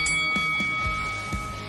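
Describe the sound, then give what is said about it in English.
A fight bell rings with several quick, evenly spaced strikes over a steady, bright metallic ring that sustains throughout, with no voices. “Now go back to the corner and come out fighting at the bell.”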